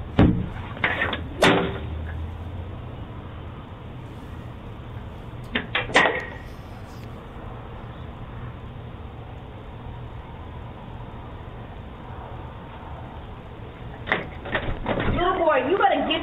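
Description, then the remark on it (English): A fist pounds heavily on a front door in short bursts of two or three loud thuds, separated by pauses, with a voice speaking near the end. “Beating on my door like this.”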